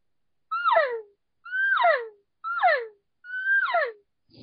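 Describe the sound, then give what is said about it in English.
Four short, evenly spaced elk cow calls blown on a thick 04 latex reed caller, almost double the thickness of a 0.25 reed and made for bugling, each a twangy, nasal mew sliding from a higher pitch down to a low whine, fairly loud with silence between. “So if you try doing a cow call on this one, it's a lot harder because it's made to bugle.”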